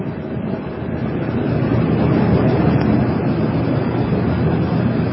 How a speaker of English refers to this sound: Oh, wait, was that for me? That was just a truck going past outside. I can barely hear it here.